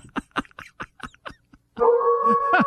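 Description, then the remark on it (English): A quick run of short, sharp yips gives way to a loud, sustained howl with a steady wavering pitch, with no talking. “Excuse me, I'll be back in a moment. I need to feed my wolf.”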